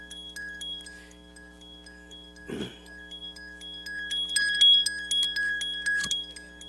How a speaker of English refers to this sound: And this is really messing you up. All right. Yeah, it's my alarm.